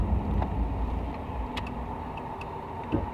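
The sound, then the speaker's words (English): Steady low rumble of cars driving past, a continuous roadside wash of traffic noise with a few faint clicks over it and no one speaking. “Look at all these fancy people driving by like this.”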